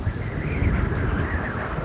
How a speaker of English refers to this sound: The sky would not stop. More lightning, more thunder.